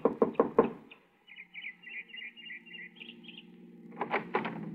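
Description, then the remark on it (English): Four quick, firm knocks on the wooden door of a small house in the evening, in an even rhythm, followed by a quiet stretch with faint chirping birds and a few more muffled knocks at the end. “I got her home address and knocked at the door of her small house 15 minutes after she arrived home that evening.”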